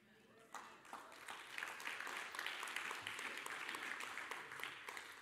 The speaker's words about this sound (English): Thanks, Mom, for clapping back there and starting that. Appreciate it.